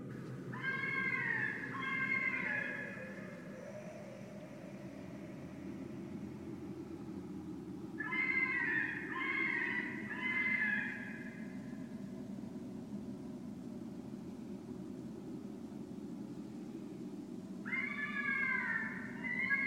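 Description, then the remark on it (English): A fisher's eerie, cat-like yells come in three wavering bursts spaced several seconds apart, standing out over a steady low rumble in the background. “Fishers also make eerie yells.”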